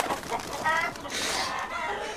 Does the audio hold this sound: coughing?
no